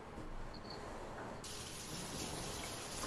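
A tap runs steadily into a sink while dishes are washed, a continuous hissing rush of water that turns brighter and stronger about halfway through, with no voices.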